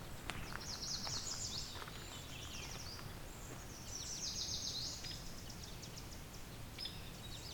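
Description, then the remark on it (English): A yellow warbler sings two bright, rapid, high-pitched phrases a few seconds apart in a swamp on June 20, 2020, with other faint bird calls and soft outdoor rustling in the background. “Yellow warbler.”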